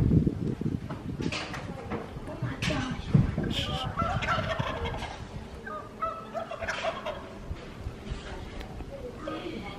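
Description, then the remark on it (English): A wild turkey and a domestic turkey gobble loudly in a backyard in repeated, overlapping bursts of rattling calls, with a steady outdoor background and faint murmuring voices underneath. “Wild goblin turkey versus a yard bird, a domestic bird.”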